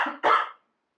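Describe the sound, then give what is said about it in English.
A person coughs twice in quick succession, fairly loud, each cough a short harsh burst, followed by silence. “Held for cough so you can edit that out.”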